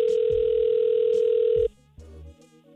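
A telephone call ringing through the line: one loud, steady electronic ring tone lasting under two seconds, then cutting off abruptly before a faint voice comes on.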